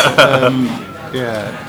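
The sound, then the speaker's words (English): Cutlery and dishes clatter and clink in a couple of sharp bursts, fairly loud, with voices murmuring underneath. “Sorry about the racket. Do you know, I think since we started, everyone started throwing knives or something.”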